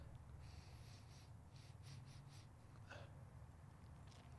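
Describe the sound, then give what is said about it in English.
A series of short sniffs in quick succession, followed by a sharper, breathier inhale, as someone smells a glass of rye whiskey one nostril at a time during a tasting, against a quiet low hum. “doing the sniff test over there. One nostril at a time.”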